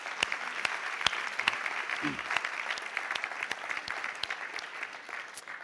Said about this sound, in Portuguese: Toda a igreja diz, aplauda o Senhor que lhe merece, ele é bom.